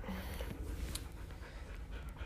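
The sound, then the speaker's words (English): A dog pants, a steady, breathy rasp that carries on without pause for a couple of seconds, with no one talking. “We had our dog interrupt for the 9,000th time.”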